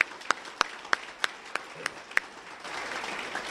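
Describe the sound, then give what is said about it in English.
An audience applauds 47 veterans at an event: a few evenly spaced sharp claps stand out over a soft crowd wash for a couple of seconds, then the clapping thickens into a steady, dense round of applause. “And how about another round of applause for all of our 47 veterans here today?”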